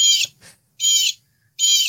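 A blue jay toy named Bo gives its call: three loud, harsh, high-pitched squawks at a steady pace, with a fainter chirp between the first two and silence in the gaps. No one speaks.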